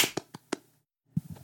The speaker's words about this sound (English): On a hypothetical zero, we're going to clap. So 3, 2, 1, clap. Okay, you ready? Yeah. All right. 3, 2, 1.